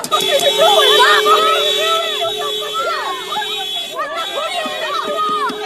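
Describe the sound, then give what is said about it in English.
A loud crowd of many overlapping voices shouting and yelling at once around a woman's car in a street, blocking her path as she tries to drive through, with a steady horn-like tone droning underneath throughout. “This woman was just trying to drive through, and there was a crowd blocking her path.”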